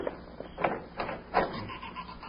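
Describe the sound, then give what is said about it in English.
A door is opened with a few rough, creaking scrapes of wood, three short strained pulses spread over about two seconds, fairly quiet with no voices. “Oh, the dead blasted door.”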